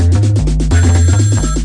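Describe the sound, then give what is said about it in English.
A second phone, a trap phone, rings loudly, a buzzy repeating electronic ringtone pulsing in short bursts with no one speaking over it. “Oh my god, she calling my other phone.”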